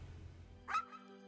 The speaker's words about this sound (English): The puppy.